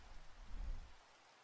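Steady, soft rain falls with an even hiss, and a low rumble swells briefly in the middle before easing off. The sound is faint throughout, with no voices.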